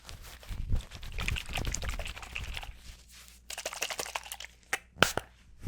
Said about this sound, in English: Now I just need to spray you a little bit more.